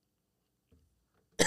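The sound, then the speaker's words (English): After near silence and a faint low throat noise, a person lets out one sharp, loud cough, cut off at the end. “I'm sorry about this cough, y'all.”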